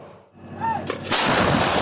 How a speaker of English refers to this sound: Israel is not at war with Lebanon, but every day explosions echo along this border. Israeli troops trading fire with Hezbollah fighters.